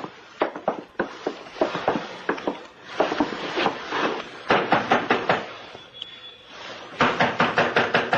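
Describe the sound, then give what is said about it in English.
Repeated knocking on the wooden door of the skipper's cabin, delivered in several bursts of quick, sharp raps that continue for several seconds. The knocks are fairly loud, with no voices alongside. “Try the door.”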